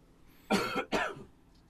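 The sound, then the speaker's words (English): Two quick, harsh coughs in close succession, fairly loud, with quiet before and after and no talking. “Cough, cough.”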